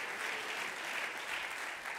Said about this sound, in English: Let's clap our hands unto the Lord, if you will.